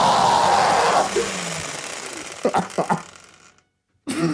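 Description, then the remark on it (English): A kitchen blender roars with a loud, harsh motor whine that winds down over about a second, followed by a few choppy grinding bursts, a brief silence, then a voice starting. “I'm going to turn on the blender again.”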